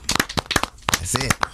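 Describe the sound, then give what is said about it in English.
A clapping sound effect: a quick burst of sharp, crisp claps, several loud irregular smacks in a row, with a brief voiced sound breaking in partway through. “And we give you you're a Human Being of the Week, and we give you the clap.”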